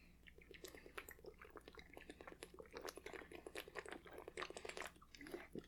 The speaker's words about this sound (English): Let me get a sip of water.